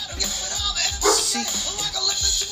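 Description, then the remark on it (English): A dog named Cheyenne barks repeatedly in short, loud bursts, with a few yips mixed in over a steady background hiss. “Y'all hear my dog?”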